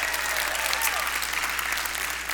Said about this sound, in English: We are streaming live on Facebook Live right now. So let's clap for everyone who's with us online.